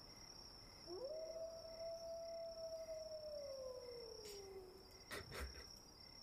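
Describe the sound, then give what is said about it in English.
A single long wolf howl in a forest swells up, holds a steady pitch, then slowly sinks and fades, all over a constant high chirring of crickets, with a few soft knocks near the end. “My primeval awareness tells me there are wolves in this forest.”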